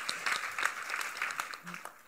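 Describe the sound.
An audience claps steadily for about two seconds, a dense patter of many hands at moderate loudness, with faint voices mixed in beneath it.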